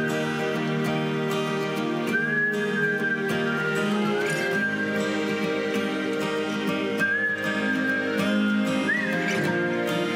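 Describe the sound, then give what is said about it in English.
Long, clear whistled notes glide over a full musical backing at the end of a song, several sustained phrases with short gaps between them, steady and fairly prominent in the mix, with no talking. “And like the whistling at the end.”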